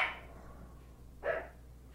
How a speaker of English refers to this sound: Did you say, wait until the dog stops barking?